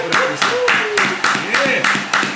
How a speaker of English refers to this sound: You got to clap it up for yourself.